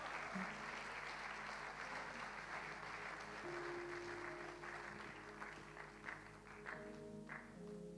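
An audience applauds steadily for the full length, a dense, continuous wash of clapping at moderate volume, with faint sustained musical tones humming underneath.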